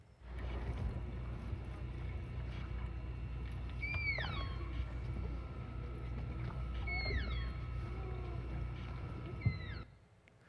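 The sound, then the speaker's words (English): Animals call to each other underwater, picked up by a microphone dropped into the water, in short bursts of high, swooping whistles that slide downward, heard a few times over a steady low engine-like drone and murmuring water. “They actually dropped a microphone down in the water so you could hear them talking to each other.”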